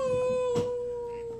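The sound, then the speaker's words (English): A single long, steady dog howl holds one sustained pitch for the whole moment, fairly loud, with a brief soft thump partway through and no talking. “These dogs and they're everywhere, bro. All over the place. All right, just let me know when I go again. Hello? It's just a dude out there howling on a rock.”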